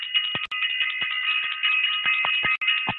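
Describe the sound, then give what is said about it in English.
A bell rings steadily and loudly for about three seconds, a bright, buzzing metallic tone broken by two brief dropouts and rapid low clattering strikes beneath. No voices. “Want to ring the bell for Self Invested to all of you guys who are self invested.”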